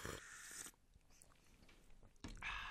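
Two airy slurps of someone sipping a drink while watching a film, one at the start and another after a quiet pause of about a second and a half, with no talking.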